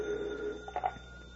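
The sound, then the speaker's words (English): A telephone rings briefly in an office, a bright electronic trill with a couple of quick bursts, moderately loud against quiet room tone, with no one speaking. “I'll take it on the other phone, huh?”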